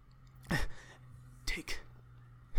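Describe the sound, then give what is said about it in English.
A voice imitates the heavy breathing of a man walking towards the listener: one long, raspy breath followed after a pause by two quicker huffs, breathy and noisy against a quiet background hum. “He keeps kind of walking towards you, and you hear him breathing.”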